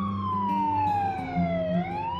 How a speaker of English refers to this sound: Here's a preview and just a warning, the sirens you're about to hear are in the trailer.